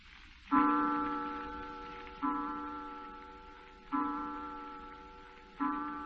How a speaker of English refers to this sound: Clock.